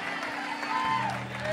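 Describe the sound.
An audience in Pittsburgh claps steadily for the Lord in a dense, continuous wash of applause, with crowd voices and a few sustained tones mixed underneath throughout.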